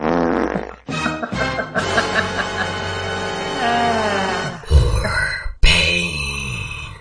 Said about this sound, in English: Fart.